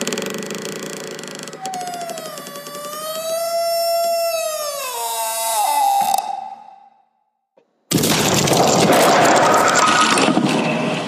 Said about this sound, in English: The pallets stacked on one side slammed into the leaning tower of pallets on the other side. Both collapsed inward into a heap of jumbled shards of wood right in front of the trash chute, blocking the hole.